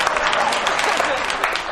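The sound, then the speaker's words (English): An audience claps steadily, a dense wash of many hands patting at once, fairly loud and sustained without a break for the full couple of seconds. “I'm going to bring a mic to the folk that ain't scared to clap.”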